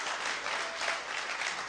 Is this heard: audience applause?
yes